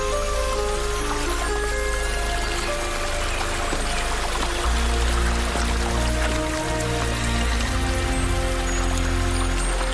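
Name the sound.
creek water flowing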